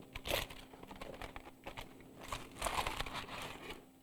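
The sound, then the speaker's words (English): Soil being handled in a crinkling plastic bag: bursts of crisp rustling and crunching rise and fall over about four seconds, with a louder flurry near the start and another later, no talk. “I have here soil.”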